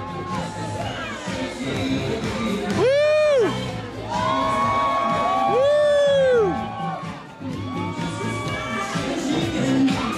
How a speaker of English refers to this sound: Here comes an emergency vehicle. They're cheering for the ambulance. They're cheering for the NY Langone Health Ambulance. They want people to move, but they're also laughing.